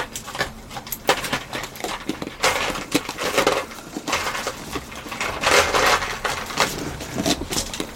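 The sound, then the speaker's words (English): Continuous rummaging through a tub of small hard game markers, with rattling, clicking and clattering pieces shifting against one another for several seconds, no voices. “Handy to have a tub of my markers.”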